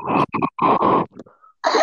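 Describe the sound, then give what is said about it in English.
Loud heavy breathing blasts straight into a microphone in a series of rough, snorting huffs with a brief quieter gap before one last gust. No one speaks. “Who the hell is breathing into the mic?”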